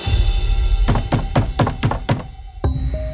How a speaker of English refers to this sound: Then he knocked.